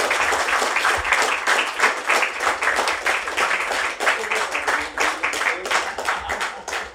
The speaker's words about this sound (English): If you can give a massive round of applause, and thank you, Crispin Blunt, Ronnie Cowan.